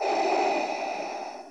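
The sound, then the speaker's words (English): A single long, hissing breath drawn through a scuba diving mask, recorded at a scuba diving shop, fairly loud, with a steady airy rush that tapers slightly toward the end. No one speaks. “You know, he actually went to a scuba diving shop and recorded breathing through the mask.”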